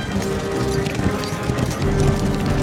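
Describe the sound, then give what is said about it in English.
Hooves of horses ridden by several men clip-clop in a quick, steady rhythm, several sets of hoofbeats overlapping, heard fairly loud over a continuous tonal musical backdrop. “We see some guys riding horses.”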